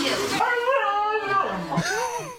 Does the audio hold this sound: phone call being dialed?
no